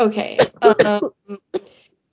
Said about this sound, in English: I said our fucking COVID coughs. It took 2 years, but Rona finally got me.